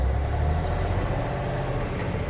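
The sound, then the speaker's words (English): A garbage truck engine runs steadily at idle as the truck sets out to pick up garbage, a deep, continuous low rumble with a dense mechanical hum, loud, with no voices. “But you know, garbage collectors have a much more important job than driving this awesome truck all day, right?”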